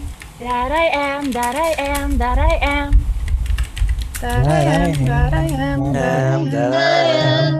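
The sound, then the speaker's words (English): Rapid clicks of computer keyboard typing run through the background, partly masked by a voice humming a wavering, sustained melody in the foreground. “Oh my God, I'm hearing crackling, typing.”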